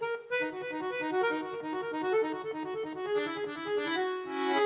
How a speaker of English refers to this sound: Does it seem familiar? It's an accordion.